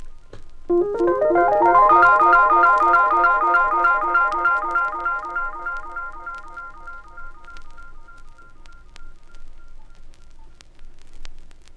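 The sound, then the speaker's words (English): A Rhodes electric piano plays bright, bell-like notes run through an Echoplex tape echo, each note repeating in a dense cascade of quick echoes that slowly fade away over several seconds, with no voices. “And here's the sound with the Echoplex.”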